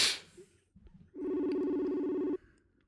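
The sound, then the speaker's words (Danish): A single ringback tone sounds on a phone line, a steady buzzing tone lasting over a second, while the call waits for someone to answer. “Lad os lige høre. Det er ikke sikkert, han tager.”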